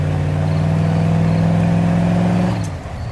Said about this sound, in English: So there's really no one else out at this hour, and you're a little surprised to hear the roar of a Jeep engine approaching up 4th Street.